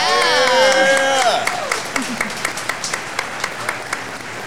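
A crowd at Pedals and Pints Brewing Company claps and whoops for the brewery's head brewer, a burst of bright cheering voices over the applause at first, then the clapping thins out into a few scattered, fading claps.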